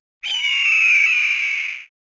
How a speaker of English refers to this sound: insert screeching falcon noise here.